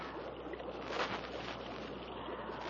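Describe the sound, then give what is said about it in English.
A steady, continuous rush of water, like a waterfall somewhere ahead on a river, filling the background with an even, unbroken roar and no voices. “Sounds like a waterfall somewhere ahead.”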